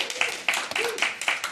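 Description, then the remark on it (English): Steady audience clapping for the children's ministry: many overlapping sharp, bright hand claps forming a continuous patter of applause at moderate loudness, with a faint murmur of voices underneath. “Clap it for children's ministry.”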